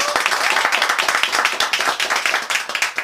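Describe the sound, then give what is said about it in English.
Dense applause from a small group, many hands clapping quickly and unevenly at once, steady for a few seconds with no talking. “This is the Black Rhyming Podcast. Clap it up one time.”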